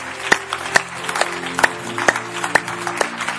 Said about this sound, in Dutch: Kom, laten we God een applaus geven. Let's give God a hand.